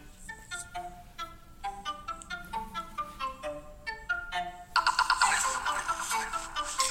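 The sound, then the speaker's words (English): A telephone ringtone plays a bright, melodic pattern of quick repeated notes, alone, growing louder and harsher over its last couple of seconds. “It was the spring of 1987 that the phone rang and my life would begin to turn in the direction I would never have even considered.”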